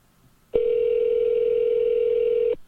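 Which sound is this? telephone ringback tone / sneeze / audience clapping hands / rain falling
telephone ringback tone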